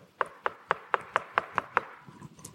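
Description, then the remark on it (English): A rapid, evenly spaced series of eight sharp knocks on a door, crisp, followed by quiet. No one speaks. “Until one day, get this knock.”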